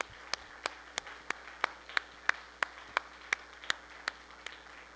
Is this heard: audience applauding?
yes